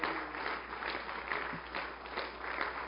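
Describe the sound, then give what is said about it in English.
A church audience claps together after a prayer in dense, sustained applause, hundreds of overlapping hand claps forming a steady wash of sound at moderate loudness with no voices standing out. “And could you just clap your hands one more time?”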